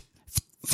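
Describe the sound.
A voice imitates silenced gunshots with two short, breathy puffs of air, the second slightly longer, separated by a brief pause, with no speech around them.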